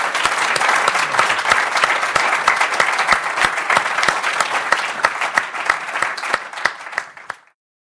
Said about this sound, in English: So thank you so much for coming out today. It's been lovely to have you all here. And please, a round of applause to your panel